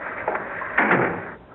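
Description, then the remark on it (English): A door is pushed shut, producing a brief muffled thud and scrape of moderate loudness after a faint click, with a low steady hum throughout and no voices. “You'd better close the door”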